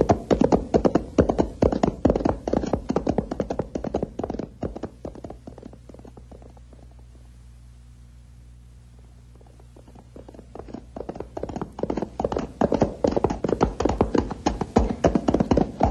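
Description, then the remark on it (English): Rapid, steady hoofbeats of a galloping horse urged on by its rider clatter along, fading away, falling nearly silent for a few seconds, then growing loud again. “Come on, horse, let's pick him up and lay him down on the double.”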